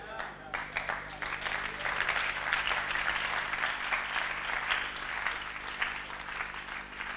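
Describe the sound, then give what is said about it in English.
A Christian audience claps steadily together, a dense, continuous wash of many hands that swells slightly in the middle and keeps going without pause, with no talking over it. “All clapping Christians will get the blessings ahead of non-clapping Christians.”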